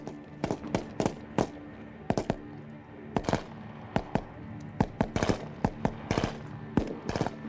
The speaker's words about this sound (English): Then gunshots began.